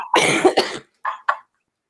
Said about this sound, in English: Sorry, I'll try to mute myself when I cough.